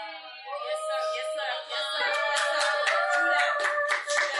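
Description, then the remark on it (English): An audience claps steadily in a dense, continuous patter, building after the first couple of seconds, with sustained voices cheering or calling out over the applause. “I've marked those who were clapping.”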